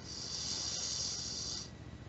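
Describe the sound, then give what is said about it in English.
A slow, deep inhale drawn in through the nostrils, filling the belly, a soft steady airy hiss lasting under two seconds before trailing off into quiet. Fairly gentle, with no talking. “And whenever you're ready, taking another deep breath in, breathing in through your nostrils, filling your belly.”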